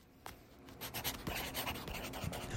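A pencil scratches quickly across paper in short, dry strokes, laying down the outline of a drawing of an elephant, fairly quiet, with bursts of scribbling repeating in a busy rhythm and no voices.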